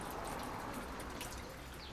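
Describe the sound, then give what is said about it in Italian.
A steady stream of drinking water flowing from a public nasone fountain in Rome, Italy, a continuous soft splashing trickle that holds even throughout, fairly quiet, with no voices. “At every corner you'll find piccole fontane, small fountains flowing with acqua potabile, drinking water.”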